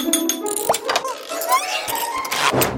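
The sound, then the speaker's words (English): Small bells and wind chimes, gathered to build a toy fairy dust deflector, tinkle in a busy, overlapping jingle, with bright metallic clinks and ringing high tones rising and fading throughout. “Got bells and a fan. Here come the chimes!”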